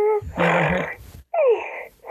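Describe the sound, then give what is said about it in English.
A toy doll named Eugenia gives a rough, raspy electronic snore, a long rumbling inhale-like burst followed after a short pause by another gravelly snore. Nobody talks over it. “Oh, she snores.”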